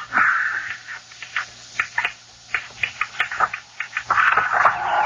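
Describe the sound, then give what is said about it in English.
A bird trying to get in flutters and pecks against a rattling window, with irregular quick taps and knocks between scratchy bursts of wing-beating at the start and end. No one speaks. “It's some bird trying to get in.”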